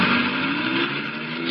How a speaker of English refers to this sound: There go the trucks again to every part of the city. Nobody has to stop them now.